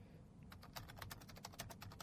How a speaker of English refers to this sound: You can hear me typing.